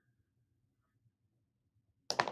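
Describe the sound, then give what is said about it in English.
After near silence, a pen is slipped into its own protective case, ending in a brief cluster of crisp clicks and a soft scrape as it settles. “It goes and rests within its own protective case.”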